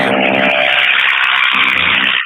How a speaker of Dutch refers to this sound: Wacht even op de motor die langs rijdt.